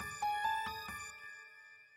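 A telephone rings with a quick burst of bright, bell-like electronic tones, four rapid pulses that then fade out with a lingering ring. No one talks over it.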